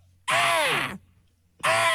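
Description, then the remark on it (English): A loud, harsh bald eagle screech rings out, followed after a short pause by a second raspy screech that cuts off abruptly. “Where's that bald eagle? Damn, you had that queued up.”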